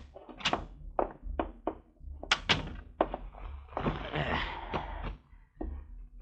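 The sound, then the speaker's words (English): A door being opened and shut, with a rapid series of solid thunks and clunks and a stretch of scraping, rattling movement in between, with no one talking. “Get the door, will you?”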